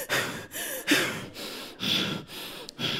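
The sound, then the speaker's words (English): A voice imitates a sister's heavy, panting breaths on the phone, six or so rapid, raspy inhale-exhale bursts in a steady rhythm, loud, with no words spoken. “Like, I could call my sister, and as soon as she get on the phone, she breathing on her.”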